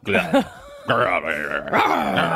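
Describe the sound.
A person's voice imitates the sound of a slapped crocodile like a dog growling, with a few loud, rough snarling bursts running back to back.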